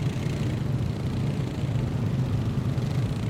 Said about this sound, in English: he decided to take the largest, most inefficient, gas-guzzling ATV to noise up an already ear-splitting, noise-polluter region of Canada.